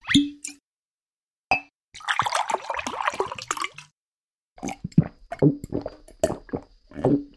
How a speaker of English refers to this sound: It's season 20, where the sparkling water's going down the drain.